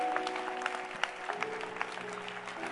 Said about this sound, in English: Are you clapping your hands for Paul